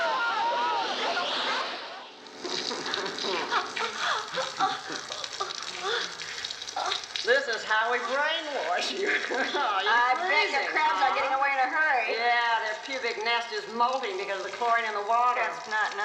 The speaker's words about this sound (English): Hosed down like animals.